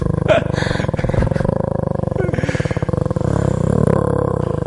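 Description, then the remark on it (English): A person imitates an animal growl with a long, rough, throaty rumble that stays loud and steady for several seconds, rising and wavering in pitch. “That's a pretty good growl, actually.”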